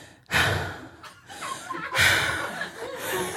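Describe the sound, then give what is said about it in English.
A person imitates heavy, exaggerated breathing: two loud, breathy inhales and exhales, airy and rough, with a slight snorting, laugh-like edge and no words. “And while we're making out, he just pulls away and then he starts breathing heavily like this.”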